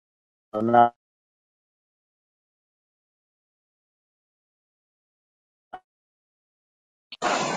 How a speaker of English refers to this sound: I think you're breaking up a little.